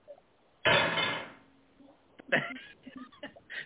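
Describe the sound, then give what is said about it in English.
A sudden loud crash of dishes, triggered by hitting the wrong button, rings out and fades over about a second, followed by a run of lighter clinks and knocks of plates and cutlery, slightly muffled. “You're doing the dishes in the background.”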